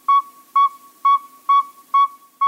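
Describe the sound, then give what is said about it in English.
A male northern saw-whet owl gives a steady series of six clear, whistled toots, evenly paced about two per second, fairly loud against a quiet background. “Here are two males. Listen carefully to the pacing of their hoots.”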